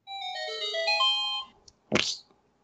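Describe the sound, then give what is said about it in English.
A phone ringtone plays a short electronic melody of bright stacked tones for about a second and a half, followed by a brief, loud, noisy burst. “What is going on with this phone?”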